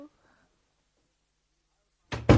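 A room door is shut with a loud thud, followed quickly by a second heavy clunk as it is locked, after a brief quiet pause with a faint voice at the start.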